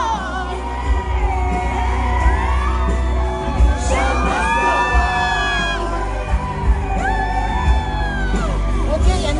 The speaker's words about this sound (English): She's singing and screaming and annoying the heck out of a man that's sitting in front of her. Show must go on!